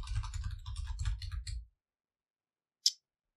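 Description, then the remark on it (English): Rapid tapping on a laptop's built-in keyboard for about a second and a half, with a low rumble underneath, then silence and one last sharp key click. “Your keyboard's connected to, it's part of your laptop.”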